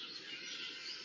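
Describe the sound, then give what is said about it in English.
A dense, continuous chorus of birds chirping and twittering outdoors, bright and busy with no pauses, fairly loud, with no one talking. “Wow, the birds are really, the hottie-dogs are joining in. They are so excited.”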